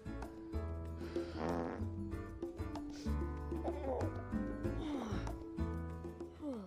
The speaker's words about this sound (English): You better not snore. You're such a jerk.